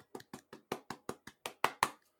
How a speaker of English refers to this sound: And shout out to the 8 individuals who accomplished the feat of making it into the first round of the playoffs. So golf clap to y'all.